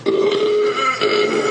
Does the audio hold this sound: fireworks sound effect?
no